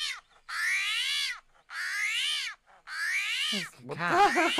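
animal, armadillo vocalization

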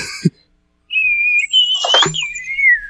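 human body sound, failed attempt at whistling

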